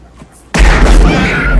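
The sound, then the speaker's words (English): After a brief near-silence, a single heavy gunshot from a large handgun cracks out loud, hitting a man in the arm, followed by a booming, rumbling tail that lingers to the end. “Gets him in the arm. And he runs with that off. Hand cannon.”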